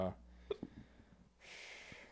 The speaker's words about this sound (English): Got the hiccups now.